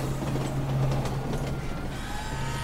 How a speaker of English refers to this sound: And there's the 1:42 p.m. L train headed downtown.